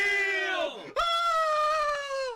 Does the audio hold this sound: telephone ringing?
no